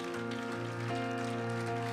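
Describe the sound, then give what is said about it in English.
An audience at a church service claps hands to the Lord together in a dense, steady patter, spread over sustained, droning musical chords that hold at an even, fairly loud level throughout. “Come on, why don't we clap our hands to the Lord together?”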